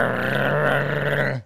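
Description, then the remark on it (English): A female dog growls in one steady, low, rumbling stretch lasting over a second, fairly loud, then cuts off abruptly; no one speaks. “Boy, she started growling.”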